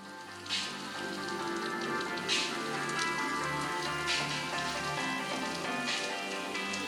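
Steady rain patters on a hard surface, a dense continuous hiss with scattered brighter drips and splashes breaking through, even in level throughout, with no voices.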